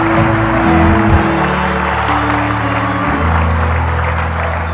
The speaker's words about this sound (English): Give him a mighty clap of praise. Come on, clap for Jesus. Clap for Jesus. Clap for Jesus. Hallelujah.